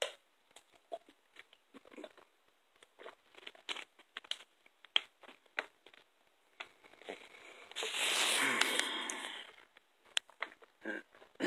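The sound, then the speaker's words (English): Scattered plastic crinkles and small clicks as a water bottle is handled, then a brief slurping sip of water rises and fades, followed by a few more soft taps. No one speaks. “I'm about to take a little sip of this water, this aqua.”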